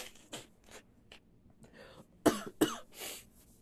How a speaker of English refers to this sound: It's like recently I've been having a cough and I haven't gotten COVID and I don't feel like it's a COVID cough, but it's bad for y'all, so I apologize.